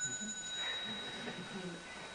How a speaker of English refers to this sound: And just to help us along a little, Marge will hit the bell from time to time.